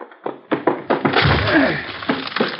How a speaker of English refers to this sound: We'll have to break down the door. Very well. Okay, let's go. Didn't budge it an inch. We try it again. Yeah. Ready? Yep.